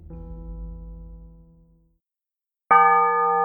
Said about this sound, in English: The tolling of the town bell continued, far past the point of being any useful sort of alarm.